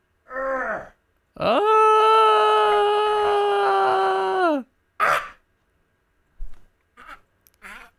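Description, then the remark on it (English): A yellow cat named Zelda gives a short meow, then a long, loud, drawn-out yowl lasting about three seconds at a steady pitch that dips at the end, followed by a few brief, softer sounds. “Oh, there you are. Come here, yellow cat.”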